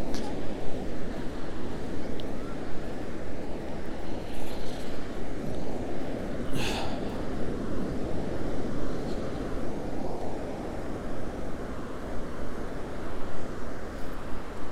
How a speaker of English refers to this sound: We're gonna get some water sounds. See if we can get some good old water sounds.